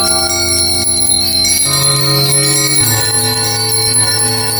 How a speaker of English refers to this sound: It was with great astonishment and with a strange, inexplicable dread, he saw this bell begin to swing, so softly in the outset that it scarcely made a sound. But soon it rang out loudly, and so did every bell in the house.